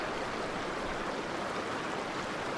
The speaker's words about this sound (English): Good to go? The first major river crossing. Not bad. Over the first bit.